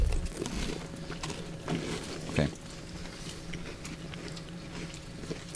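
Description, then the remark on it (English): Crunchy chewing of a hard sheep's milk cheese, with irregular bites and mouth noises over a low steady hum, no talking. “I'm gonna try some sheep's cheese.”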